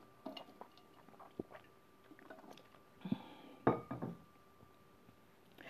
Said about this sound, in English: Just one moment. Having a hard time breathing. Just one moment. Let me give me a sip of water.